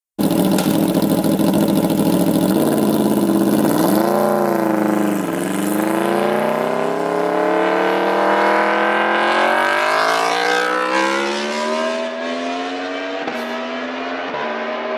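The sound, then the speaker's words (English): An Aprilia motorcycle engine with a loud aftermarket exhaust idles roughly, then revs up steadily, its pitch climbing for several seconds before easing back with a couple of quick blips. It is loud, with no talking. “And the Aprilia is similar. And this is going to sound different because it's aftermarket exhaust. But as this gets up in the revs, it's very similar.”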